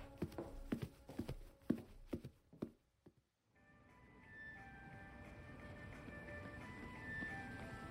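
Heavy footsteps stomp through an inch of snow that fell last night, on the 50-foot walk from a school's main building to the cafeteria, about a dozen crunchy, uneven thuds over a few seconds. They stop, and after a brief silence cheerful tinkling Christmas music plays steadily.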